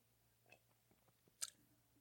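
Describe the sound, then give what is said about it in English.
Someone sips whiskey from a glass: soft wet mouth clicks and small slurping sounds, then one brief sharp clink, all quiet over a low steady hum with no talking. “Sipping on my whiskey here.”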